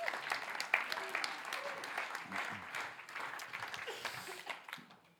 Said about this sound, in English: Thank you, gentlemen. Wonderful. Let's give a round of applause for our big team three.